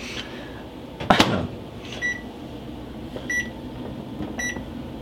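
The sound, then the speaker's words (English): A microwave oven, with a can placed in the center and a 7:15 cook time set, hums steadily while a sharp clunk sounds early on, followed by three short electronic beeps spaced about a second apart, clear. “Does it usually make that sound? The microwave?”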